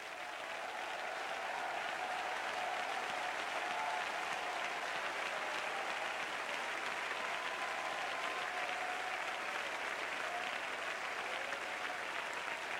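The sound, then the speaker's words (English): A church audience, standing, claps loudly and steadily for about thirteen seconds, a dense wash of hands with scattered shouts and cheering voices rising through it. No clear words are spoken. “Somebody that believes that, stand to your feet and clap your hands and shout aloud.”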